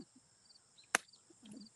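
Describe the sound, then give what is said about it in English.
A single sharp crack as a real egg is smashed on someone's own head, a brief bright impact standing out against quiet background hiss, followed by faint low rustling. “I'll smash it on my own head. All right, everybody. Real eggs”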